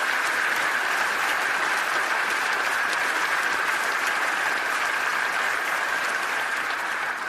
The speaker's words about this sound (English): So please give a round of applause to both Greg and Benjamin.